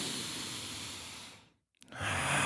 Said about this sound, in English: Is just to meditate and do diaphragmatic breathing